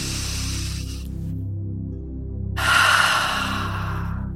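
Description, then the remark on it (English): A slow, deep breath drawn in through the nose, airy, with a shorter breath before it, over a steady low musical drone and no talking. “Breathing in through the nose.”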